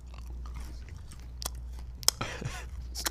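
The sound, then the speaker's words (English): Crisp crunching as someone bites into a crunchy chocolate bar sold as Cracker, during a chocolate tasting, and chews, with sharp cracking snaps and wet mastication sounds over a low steady hum. “I mean, overall, it's good. It's a crunch bar, but they called it cracker.”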